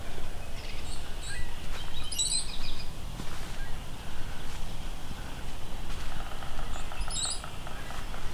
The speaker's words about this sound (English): Okay, where's this cowbird? He's really loud.